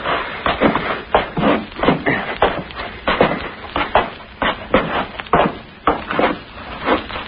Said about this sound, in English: Hey, the trap door's unfastened. Yeah, it seems to be. Up we go. Okay, come on up.